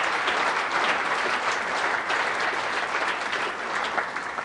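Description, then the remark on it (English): A church audience applauds Jesus steadily, a dense wash of many hands clapping at an even, sustained loudness for the whole stretch, with no voices standing out. “Why don't you give a good applause to Jesus right now?”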